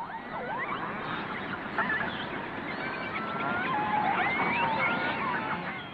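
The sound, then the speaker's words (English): A chorus of killer whale calls: overlapping squeals and whistles that rise, fall and wobble in pitch, sounding almost like honking, over a steady bed of low, hissing noise. “Researchers believe that apart from having the ability to communicate with other pods, family pods have their own distinct dialect. And if Keiko is to find his own pod, he needs to be a good singer.”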